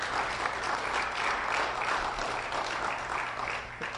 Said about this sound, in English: Give him a hand clap.